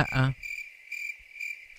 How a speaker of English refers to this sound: I get the crickets. I got to get the crickets. Get the crickets.